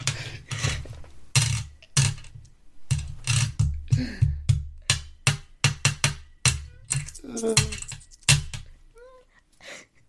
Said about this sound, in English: And finally, I would like to do a slam. When I mean by doing a slam, I mean playing with some coins constantly and annoying everyone out there.